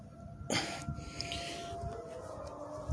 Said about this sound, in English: Oh, sirens are going.